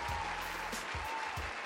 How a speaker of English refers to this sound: We're going to give a round of applause to Carmelo Anthony, man.